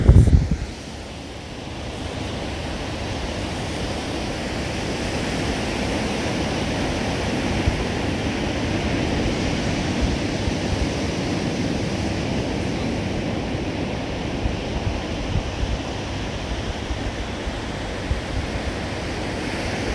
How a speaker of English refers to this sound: enjoy God's voice in the ocean.